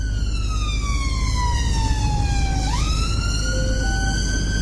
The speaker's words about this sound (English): Just going to try out the siren.